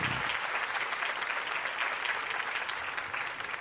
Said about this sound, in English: Let's get a round of applause for Rhea Ripley.